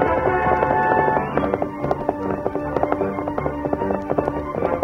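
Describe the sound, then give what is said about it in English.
Rapid, rhythmic hoofbeats of a horse galloping at top speed in a chase in The Lone Ranger drum steadily under a loud, sustained orchestral music bed, with no voices. “Silver jumped forward from the group, Wilkins looked back. Then he urged his horse to top speed.”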